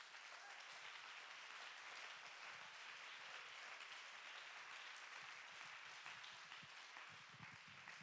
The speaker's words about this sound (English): Let's clap our hands and give God the praise.